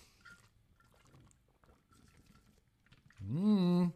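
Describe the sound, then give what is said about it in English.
Drinking water pours into a cup, a loud gurgling stream in the final second whose pitch rises as the cup fills, after a stretch of faint, low background rustling. “That's not going to be enough water to get me through this whole vlog, Hydro Homies.”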